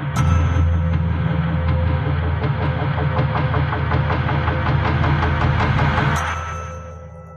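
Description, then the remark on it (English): A loud, steady roar of helicopters passing overhead, with a deep engine drone and a rapid, regular rotor thump, holding strong for several seconds before fading away at the end. No voices. “Do you guys hear helicopters?”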